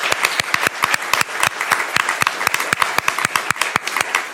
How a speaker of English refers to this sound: Thank you all for coming, and let's give a big round of applause to our panelists.